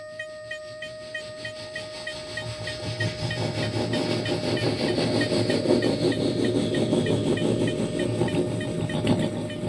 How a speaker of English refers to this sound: Bad Bart watched as the train slowly chugged by.